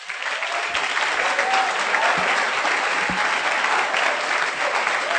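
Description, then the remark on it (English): An audience breaks into sustained applause for God, a dense, steady wash of many hands clapping at once, holding at an even loudness for several seconds with no voices standing out. “Clap for God.”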